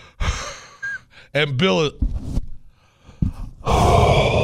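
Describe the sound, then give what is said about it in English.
Heavy, drawn-out breaths of an attorney falling asleep on the other end of a phone line, rising and falling in a loose rhythm as if nodding off, with a few voiced, breathy bursts mixed in. “That's a perfect example of the attorney on the other line falling asleep.”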